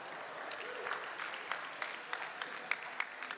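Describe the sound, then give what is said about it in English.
Steady applause from an audience, many hands clapping in a dense wash with a few sharper individual claps standing out, moderately loud throughout with no talking. “Those of you who share my spiritual gift of loading dishes, I appreciate the applause.”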